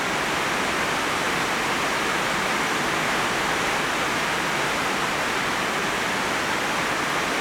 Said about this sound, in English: And Lord, we just let the rain say our prayers for us.